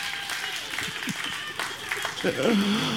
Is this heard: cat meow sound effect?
no